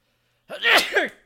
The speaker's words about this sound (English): Wow, I haven't sneezed in like fucking months.